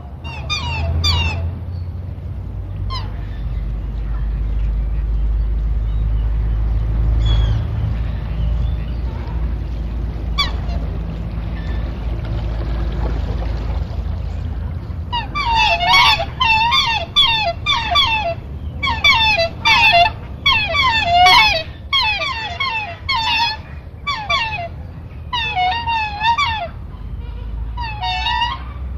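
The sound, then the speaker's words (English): Geese and ducks honk and call on a lake, starting with scattered cries over a low rumble, then breaking into a loud, busy chorus of repeated honks in the second half. “you do begin to get terrific activity amongst our geese and our ducks on the lake, for example.”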